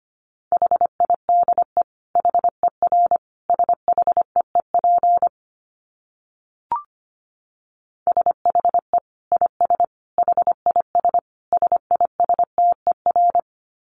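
Morse code at 25 words per minute: a steady mid-pitched tone keyed in quick dits and dahs, sent in two runs separated by a short pause with a faint blip between them.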